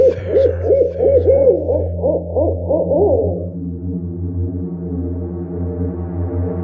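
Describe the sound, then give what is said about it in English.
A rapid run of about nine rising-and-falling owl hoots, loud, then fading into a steady low droning hum that continues alone to the end. “Finding yourself in the talons of an owl in the shadows of the forest moonlight.”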